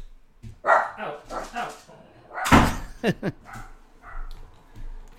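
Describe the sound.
A pet dog lets out several short barks and whiny yelps, with a sharp bang like a door midway and muffled voices in the background.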